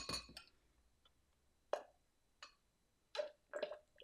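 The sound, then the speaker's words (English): A glass clinks and knocks a handful of times at irregular intervals while someone drinks water, short bright taps with a faint ringing tone, over quiet background with no talking. “Because again, running out of water here.”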